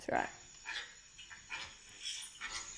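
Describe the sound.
A person imitates a dog barking: one loud, sharp yelp at the start, followed by several softer, short bark-like bursts spaced about half a second apart.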